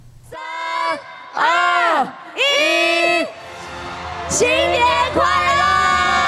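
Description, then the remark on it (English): A large crowd at Taipei 101 in Taipei shouts together in loud, rhythmic bursts, counting down to midnight on New Year's Eve, then breaks into sustained cheering and whooping as fireworks are launched from the skyscraper, continuing to the end. “The crowd counts down to midnight and fireworks burst from Taipei 101.”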